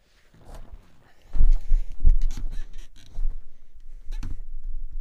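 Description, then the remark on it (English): A squeaky chair creaks and squeals in irregular bursts, mixed with soft low thumps as it shifts, moderately loud, with no talking. “sorry, the chair is so fucking squeaky”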